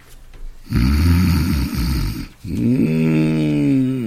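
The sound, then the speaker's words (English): Loud, exaggerated comedic snoring of a husband, heard through a telephone carried into the bedroom: a harsh, rattling inhale followed by a long, buzzing, almost whistling exhale, with no talking over it. “I can't hear your husband on account of those fire engines.”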